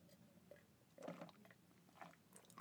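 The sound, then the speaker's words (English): Someone drinks water: soft, wet sips and swallowing sounds in a few short bursts, ending with a brief, sharper knock. “I need to take another drink of water because, girl, your girl is dry-mouthed and parched.”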